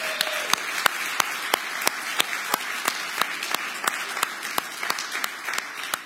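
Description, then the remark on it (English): A church audience applauds to thank an elder for his years of service: a dense, steady wash of many hands clapping, with sharp, regularly spaced claps cutting through it for about six seconds. “And church, can we give him a round of applause saying thank you?”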